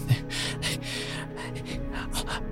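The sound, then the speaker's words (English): A voice imitates quick, panicked breathing: a rapid series of sharp, breathy gasps and exhales over steady low background tones, fairly loud. “And then they start breathing quickly.”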